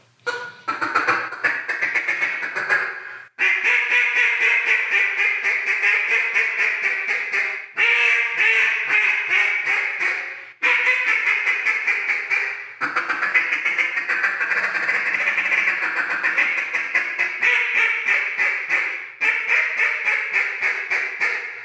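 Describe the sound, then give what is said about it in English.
New duck call designs are blown loud, mimicking quacks in long runs of rapid, rhythmic honking notes with brief pauses between sequences, no talking over it. “And right now, he's just giving me his honest feedback on a couple of these new call designs that we're getting ready to announce and launch to the world.”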